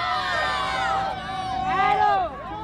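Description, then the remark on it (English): A group of students cheering and shouting outside Green Central High School as they gather for a protest at about 2 o'clock, many overlapping voices rising and falling in excited whoops, fairly loud and continuous throughout. “As more kids come and join them, there's cheering.”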